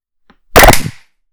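A loud, sharp burst of hand clapping to sync recordings, like a few people clapping at once, ringing out briefly after a faint tap. No one speaks.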